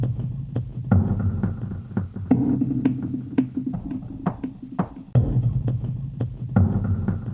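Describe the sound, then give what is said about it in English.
A looping groove made on an AN1X synthesizer: throbbing low bass pulses with sharp bursts of white-noise hiss falling in an irregular, repeating rhythm, steady and fairly loud throughout with no voices. “So then along with that, I had an AN1X synthesizer, and I sat for ages trying to create this kind of weird white noise kind of groove on there.”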